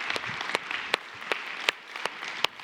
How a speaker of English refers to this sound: So with that, those of you still standing, I just want to clap for you.